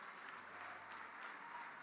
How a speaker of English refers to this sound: Come on, give the Lord a bigger hand clap.